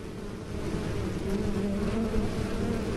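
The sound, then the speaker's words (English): A steady honeybee buzz hums continuously throughout, a dense droning tone with slight wavering in pitch and no voices. “13 degrees, 6 buzzes. I take off and the journey turns into black and white.”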